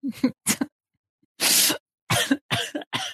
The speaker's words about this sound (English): No, I'm coughing.